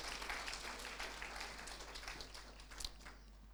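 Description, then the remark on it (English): An audience breaks into applause, a dense wash of many overlapping hand claps that holds steady for a few seconds, with no one speaking over it. “I want you to clap for him for this great opportunity.”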